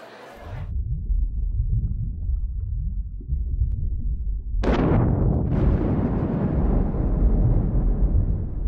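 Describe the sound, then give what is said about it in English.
A deep, muffled underwater boom from a small underwater explosion at a rocky crag hundreds of yards from shore, startling a school of fish and shooting debris upwards, followed by a second burst and a long rumbling, bubbling roar that stays loud and dense, with no voices present. “A small underwater explosion startles a school of fish.”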